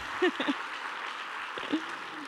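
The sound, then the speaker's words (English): A steady wash of audience applause fills the whole moment, with a few brief voices or cheers poking through the clapping. “So, yeah, that deserves one big round of applause”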